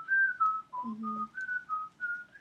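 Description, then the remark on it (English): Someone whistles a short melody from the film The Aristocats, steady pure notes stepping up and down in a gentle phrase, with no talking over it. “I couldn't think of the words, so I just whistled it.”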